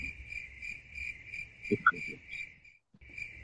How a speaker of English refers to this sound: Crickets.